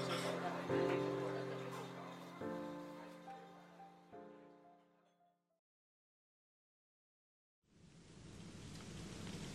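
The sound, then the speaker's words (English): After a few sustained musical tones fade into silence, a steady hiss of light rain begins near the end, falling in the morning over a local farmer's market; continuous, with no voices. “A light rain falls as they shop for a few items.”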